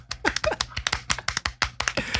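Soft, polite golf clapping: a quiet run of light hand claps in a fairly steady rhythm, about a dozen crisp pats over two seconds, with no voices.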